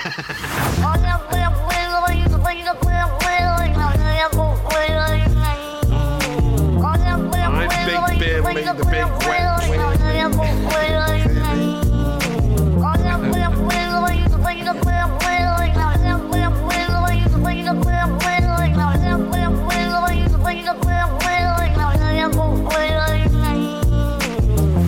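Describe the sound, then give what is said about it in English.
A loud, continuous music remix built from a cat's talk-like meows, whose gliding, pitched yowls repeat in phrases over a steady thumping beat and bass. “We all love a talking cat, don't we?”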